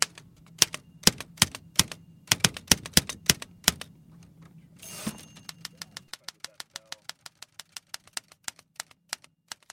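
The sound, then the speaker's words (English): Crisp clacks of a manual typewriter, one of 10 or 12 typewriters kept in the Chronicle's archive, being typed on in a steady, brisk rhythm, with a low rumbling hum underneath for the first half before the keystrokes continue more cleanly. “like I would say 10 or 12 typewriters down here, and it's like there's one from each decade.”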